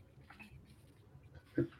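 A single short, low burp pops out near the end, fairly loud against a quiet backdrop of faint murmuring and small rustles.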